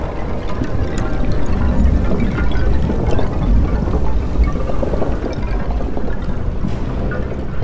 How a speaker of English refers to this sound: Pieces of ice, in all shapes and sizes, emerged from the sea, crashing into one another to form a bridge, miles above the cold ocean waves.